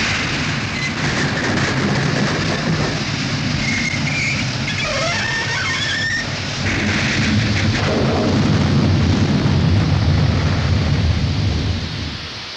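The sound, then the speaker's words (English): A loud, continuous roar of a mail train derailing on a tight curve as a rail springs out, its cars crashing into a ditch, with heavy rumbling throughout and shrill metallic screeches in the first half, tapering off at the very end. “The engine struck a tight curve. A pent-down rail sprang out like a knitting needle and...”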